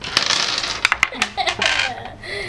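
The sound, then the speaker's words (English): Dice clatter and tumble across a hard tabletop in a quick series of sharp clicks and rattles, fairly loud, with faint voices murmuring underneath. “Screw you, dice.”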